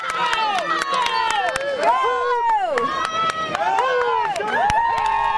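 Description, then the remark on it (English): A loud crowd cheers and shouts continuously at the U.S. Masters Swimming National Championships, many voices whooping and yelling at once, with sharp claps and whistles cutting through. “There's plenty to cheer about at the U.S. Masters Swimming National Championships, including the presence of a dozen former Olympians.”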